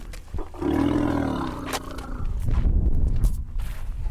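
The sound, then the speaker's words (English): Orphaned young elephants romp in a dusty clearing at an elephant orphanage in Nairobi National Park, Kenya, on a bright, warm day: a loud, drawn-out harmonic bellow gives way to deep rumbling and dusty scuffling, with sharp snorts and squeals cutting through near the end. “On a bright, warm day in Kenya, young elephants romp in a dusty clearing.”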